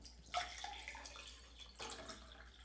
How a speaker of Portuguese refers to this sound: A ASMR de água. Céu, ASMR de água.